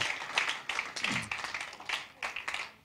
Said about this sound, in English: How cool is that, guys? Why don't you give a clap?